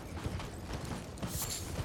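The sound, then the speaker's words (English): Horse hooves clip-clop in a steady, uneven rhythm of soft, low knocks, with a brief creaking hiss partway through. No one speaks. “You gonna ride on your horse and I ignore might them?”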